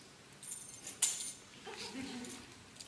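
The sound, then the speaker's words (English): A short jingle of house and car keys lasting under a second, ending in one sharp metallic clink, followed by quieter rustling and a faint voice. “And last, I guess I have six. These are keys.”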